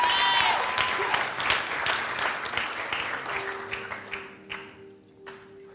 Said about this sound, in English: All right, six of you clap your hands, but that's all I need is six of you to agree with me.